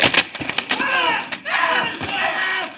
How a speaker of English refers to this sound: Now I'm going to smash that front propeller.